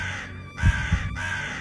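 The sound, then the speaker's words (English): A crow caws harshly as it flies away, two rasping calls spaced about half a second apart, loud, with a steady background hum and no voices. “And the bird flew away, up into the heavens, its harsh caw echoing around us as if the bird was chuckling.”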